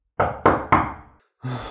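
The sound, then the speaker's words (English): Three firm, evenly spaced knocks on the wooden door of a house at night, resonant, each ringing out briefly before the next; after a short pause a different, sustained sound begins. “She knocked on the door.”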